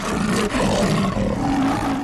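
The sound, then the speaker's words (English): A person imitates a big cat's roar: one loud, sustained, gravelly growl lasting about two seconds, with no other sounds or talk. “That was a big roar today.”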